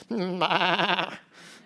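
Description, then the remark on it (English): A single loud, wavering sheep bleat as a battle cry, lasting about a second, with a quivering tremolo through the middle, followed by a brief soft breathy trailing noise. “How can we conquer them? We're sheep.”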